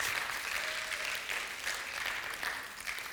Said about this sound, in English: Come on, let's give him a better round of applause than that.